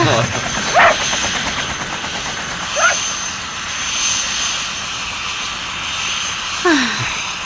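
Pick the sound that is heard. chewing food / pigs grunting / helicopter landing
helicopter landing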